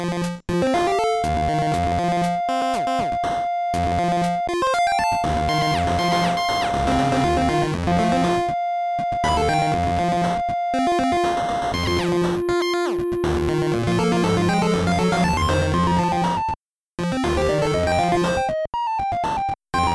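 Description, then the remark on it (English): A loud, dense music track awash in heavy echo, its sustained tones smearing and ringing together, with a few brief dropouts to silence and no one talking. “The echo there is ridiculous.”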